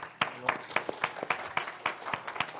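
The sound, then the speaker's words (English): A small audience claps for a few seconds, the sharp claps landing in a steady, fairly quick rhythm at moderate loudness with light room murmur underneath. “You are correct to applaud.”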